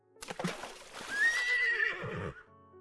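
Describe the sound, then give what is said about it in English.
A horse lets out a loud whinny lasting a couple of seconds, its wavering high cry rising and trailing off, with a few thuds and scuffling hooves beneath it, as horse and rider plunge into the cold, slimy water of a swamp at night. “Before he knew it, both he and the horse had plunged into the cold, slimy waters of the swamp.”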